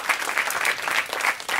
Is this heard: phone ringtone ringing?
no